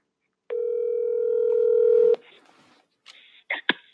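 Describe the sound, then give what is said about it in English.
A steady telephone dial tone hums for under two seconds, growing slightly louder, then cuts off into faint line hiss and a few sharp clicks as a call to a caller connects. “So we're going to get into that phone call right about now.”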